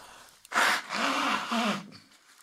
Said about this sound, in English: Let me blow my nose.